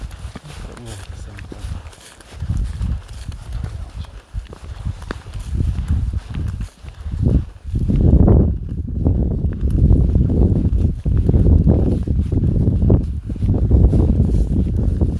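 Footsteps thud steadily across wooden railway sleepers as someone walks along a short stretch of them, fairly loud, with a hollow clopping quality and a bit of wind in the background.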